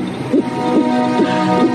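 A fetal heartbeat, about eight weeks after conception, on an ultrasound monitor, four quick, rhythmic whooshing pulses over a steady electronic hum, fairly loud, with no voices.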